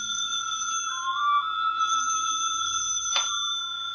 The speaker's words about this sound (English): Somewhere in the living room, the phone rings.